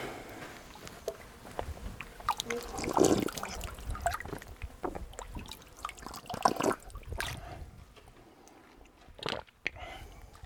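Irregular splashes and clicks of shallow water trickling and dribbling in the Mojave Desert, with wet bursts and brief louder sloshes that fade to quieter dripping toward the end.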